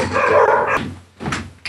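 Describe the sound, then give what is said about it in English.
A dog barks loudly at a newspaper delivery person on collection day, one drawn-out, harsh bark followed by a shorter second bark after a brief pause, with a low steady hum underneath. “We gave a paper that gets delivered, and it was collection day, and a dog's wanted to eat him for breakfast.”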